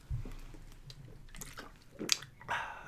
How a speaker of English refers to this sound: Hey, a sip of water for the working man.